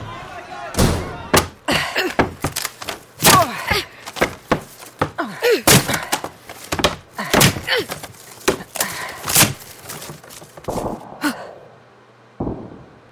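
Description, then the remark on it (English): Heavy doors are shut and barred, slamming and thudding repeatedly in quick, irregular succession, with sharp wooden knocks and scraping bars, loud, alongside gasps and strained breathing. “Bar the doors.”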